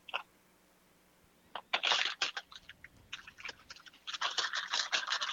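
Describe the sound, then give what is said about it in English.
Crinkly plastic rustling and crackling comes in irregular bursts as about five shrimp are pushed into a plastic bag for marinating, starting sparse and building into a steadier, louder crinkle toward the end. “Let me put that in this plastic bag. And then we'll dump our marinade in.”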